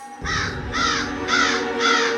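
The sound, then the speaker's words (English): A raven caws four times in a steady rhythm in a rainstorm, each call harsh and rasping, loud over a constant low rushing background. “She transformed back into a raven.”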